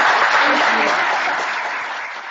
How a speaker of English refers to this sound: Thank you so much. And a round of applause, I think.